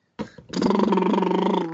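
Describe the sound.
A telephone rings in repeated bursts, a bright electronic trill pulsing twice over a steady hum, loud, with no one talking.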